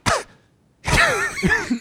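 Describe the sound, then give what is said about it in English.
A grandfather coughs: a sharp cough bursts out, then after a short pause comes a longer, raspy rumble of throat clearing with a couple of rough pulses; no one speaks. “You got something in your throat, Grandpa? Was that cough a part of your language?”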